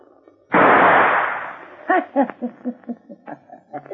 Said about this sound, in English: See that gun laying on my dresser? Uh-huh. I'm going to count three. Get it and shoot the key out of the door behind you. Don't worry about the door or the noise.